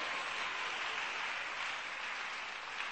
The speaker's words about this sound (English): If you don't clap, I will do something to you.